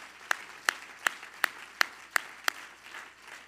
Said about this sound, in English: Everybody clap your hands to the Lord right now.